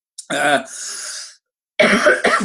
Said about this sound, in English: Excuse me, got a cough.